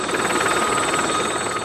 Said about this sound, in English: It's not the air ambulance. It's coming down. It's landing by the big house. The big house? Do you think that means someone's finally bought it? You're not meant to land helicopters there unless it's an emergency. It's a protected area.